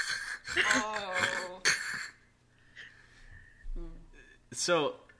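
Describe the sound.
A voice imitates heavy, congested mouth breathing, like someone who needs their adenoids out, in a few loud, rasping bursts with short pauses between them.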